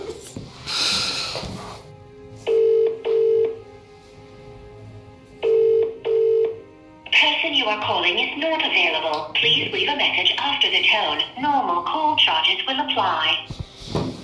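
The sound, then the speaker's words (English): An outgoing call to a number from the UAE rings twice with a steady double-pulse ringback tone, clear, before a voice starts talking over the line. “Are you going to give her a call?”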